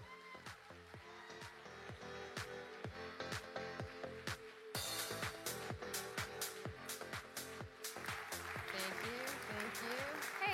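A Nova Church audience, standing to welcome a guest pastor, claps and cheers over upbeat band music with a steady, punchy drumbeat. The applause swells louder about halfway through and keeps going to the end.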